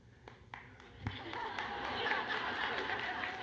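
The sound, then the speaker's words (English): A few scattered claps grow into steady applause from an audience, a dense patter of many hands that builds and holds, with some murmuring and light laughter mixed in. “The godly people are clapping now.”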